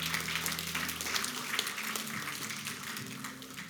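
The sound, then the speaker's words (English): An audience gives the Lord a clap offering at a morning service: dense, steady clapping from many hands fills the whole clip at an even level, with low held musical tones sounding beneath it. “Come on, give the Lord a clap offering this morning.”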